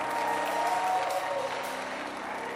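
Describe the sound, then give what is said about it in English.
A crowd claps hands together in a dense, sustained wash of applause, steady and fairly loud throughout, with a faint murmur of voices underneath. “Ah, clap your hands, your prosperity.”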